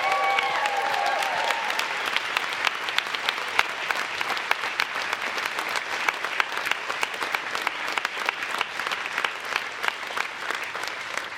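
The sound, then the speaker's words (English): An audience claps hands to the Lord, giving Jesus a big hand clap; many overlapping claps form a dense, loud patter that continues for over ten seconds, with a few faint voices at the start. “Come on, give Jesus a big, big hand clap.”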